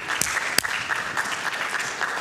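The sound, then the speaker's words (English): Steady applause from an audience, a dense wash of many hands clapping at an even level for a couple of seconds, with a few sharper individual claps standing out near the start. “Yeah, we can give us, come on, round of applause, everybody.”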